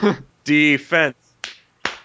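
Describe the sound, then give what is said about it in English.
A voice speaks briefly, then two sharp hand claps ring out alone, spaced a short beat apart. “Wait, no clapping.”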